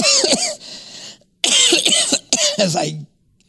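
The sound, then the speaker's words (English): Three loud, harsh coughs from a frog in the throat in quick succession, each a raspy, breathy burst, the first longest and the last two nearly back to back, with brief silence after. “Corona, cover your mouth.”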